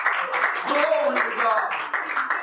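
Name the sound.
audience hand clapping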